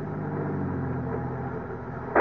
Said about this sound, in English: I switched on my ignition, started my car.